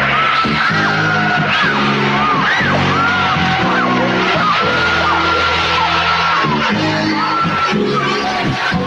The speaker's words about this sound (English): two big stingers in this film that are sort of used around the kills or potential kills. And so I'll play the first one here. They do like a scream thing, and then they do the one with the fucking musical notes in the background.